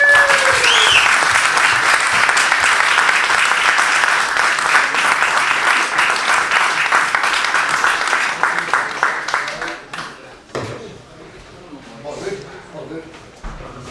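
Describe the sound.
Loud, dense applause from a crowd welcoming Stephen O'Donnell to the stage, a sustained wash of rapid clapping for about ten seconds before it thins out and fades into scattered claps and murmuring voices.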